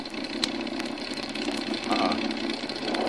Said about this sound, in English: Flight 22 to control tower. Pilot, flight 22 to control tower. Engine missing badly. What do you want us to do? Over.